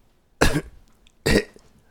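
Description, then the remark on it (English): A voice imitates two loud, raspy coughs of a man seated across from the speaker on a ride to Kingston, the first around half a second in and the second near the one-and-a-quarter mark, each a short harsh burst with quiet between them. “And I looked over and he's like unwrapping cough drops.”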